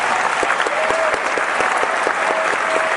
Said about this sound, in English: So wherever you are listening right now, I want you to set down your phone, set down your kids, free up those hands, and join me in a round of applause to welcome my friend and author,